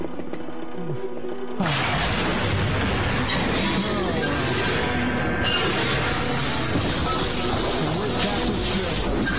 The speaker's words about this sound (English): The entire ship is exploding.